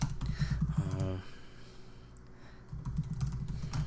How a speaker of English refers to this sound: Excuse the typing, people.